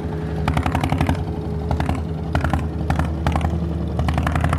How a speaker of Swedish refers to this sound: Nu får vi sällskap av Turkiets mest högljudda och mest rökiga båt här i hamnen också.